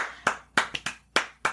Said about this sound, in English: Clap for the kids.